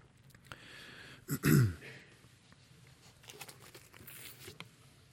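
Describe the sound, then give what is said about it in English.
A speaker giving a talk on Revelation lets out a single loud cough with a rough throat-clearing rasp, a short burst with faint rustling and background noise before and after. “Excuse me. In radio, they have a cough button. I don't have anything like that up here.”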